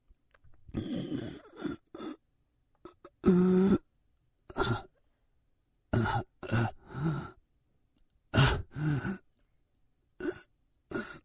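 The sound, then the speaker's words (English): A father performs exaggerated, deliberate breaths and throaty exhalations in short bursts with pauses between, one with a strained, almost groaning tone partway through. “Okay, I hope that's enough breathing for you.”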